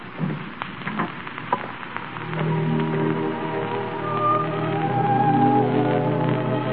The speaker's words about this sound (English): It's raining awfully hard.